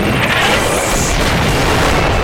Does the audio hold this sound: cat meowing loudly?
no